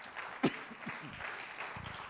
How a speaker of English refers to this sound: Amen. Can we give God a round of applause?